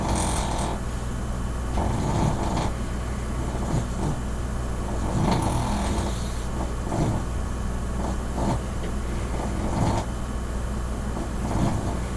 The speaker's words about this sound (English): Snoring dog.